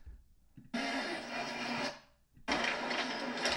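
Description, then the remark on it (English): Two loud, sustained bursts of crackling, crunching paper bags rustling as a woman falls over in the show Newlyweds: Nick and Jessica, each about a second long, separated by a brief lull with only faint low rumbling. No voices are heard. “It's all those paper bags rustling.”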